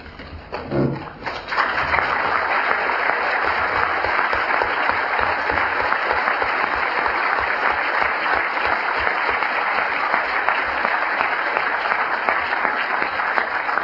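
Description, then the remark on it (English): A large audience breaks into sustained applause, the dense clapping swelling within the first second or two and then holding steady and loud for over ten seconds, with no voices heard. “Thank you, but please reserve your applause to the end.”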